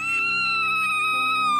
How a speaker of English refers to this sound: His excited reverie was interrupted by Izanami's blood-curdling scream.